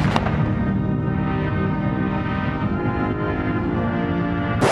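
Heavy cannon blasts from a 21-gun salute as President George H. W. Bush's coffin arrives at the Capitol in Washington at sunset on a Monday, a couple of loud booms a few seconds apart, each rolling into a long, rumbling echo that fills the open air between shots.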